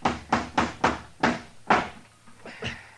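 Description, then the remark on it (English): A hammer strikes a nail into a rotten, dry wooden door, six sharp blows in a steady rhythm, followed by two softer, lighter taps at the end. “Now, let's just try one more nail.”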